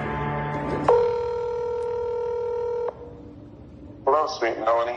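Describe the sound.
A phone call being dialed and ringing: a steady two-note electronic ring held for about two seconds, bracketed by brief muffled voice-like sounds before and after it.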